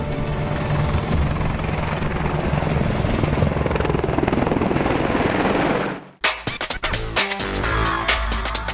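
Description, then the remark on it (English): A loud Army Air Corps Apache attack helicopter roars for about six seconds, its rotor thumping steadily under a dense engine whine, then cuts abruptly to sharp bursts that sound like gunfire. “The Apache helicopter is the Army Air Corps' most potent fighting machine.”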